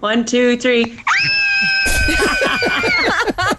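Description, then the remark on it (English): A family from Clonakilty lets out a loud, sustained scream together for about two seconds, shrill, with excited shouting and clatter around it. Brief vocal sounds come before it. “I think this is going to be our scream if we manage to win tickets to Tayto Park.”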